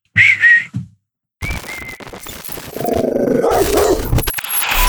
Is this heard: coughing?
no